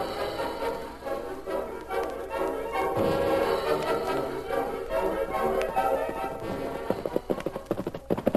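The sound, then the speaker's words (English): A rider's horse arrives, its hooves clip-clopping in a steady walking rhythm over a bed of music, the sharp hoofbeats growing louder and more distinct toward the end. “Let me unsaddle your horse and turn him loose in the corral.”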